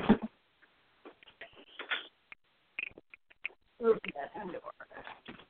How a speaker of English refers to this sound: I thought you had parrots. He's a parrot, but I call them chickens. You heard me, boy. You're a little gray chicken.